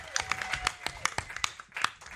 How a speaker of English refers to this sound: Everyone give a huge round of applause